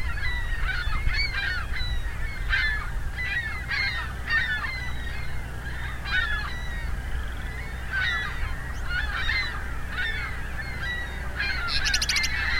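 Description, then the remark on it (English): A flock of ring-billed gulls calls repeatedly, overlapping squawks coming every second or so as the flock changes direction, over a steady low rumble of wind or traffic. “Seem to be all ring-billed gulls.”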